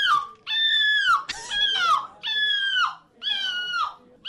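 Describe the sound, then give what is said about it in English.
A person competing in the European gull screeching competition imitates a seagull's screech: four loud, drawn-out, high-pitched wailing calls, each ending in a downward slide, separated by short pauses. “Okay, people in a seagull screeching competition.”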